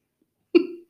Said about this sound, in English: Sorry. I have to burp. I'm trying to hold it in.